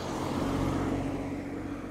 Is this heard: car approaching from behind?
yes